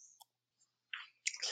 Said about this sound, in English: Wow, those take a while to chew.